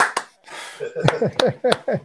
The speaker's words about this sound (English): you got to unmute your claps.